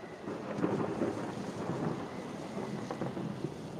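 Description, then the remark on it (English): Deep thunder claps and rumbles overhead through a storm, a continuous low roll layered with rain and gusty wind noise, fairly loud, with no voices. “This thunder is gonna start clapping overhead pretty hard.”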